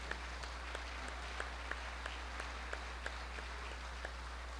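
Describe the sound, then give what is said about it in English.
An audience at Rimrock gives a brief, thin round of applause in recognition of mothers, scattered individual claps popping out unevenly over a steady low hum, with no one speaking. “Let's give them a little round of applause, please.”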